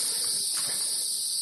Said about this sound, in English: You really can't beat a day out of the city like this. Listen to those bugs.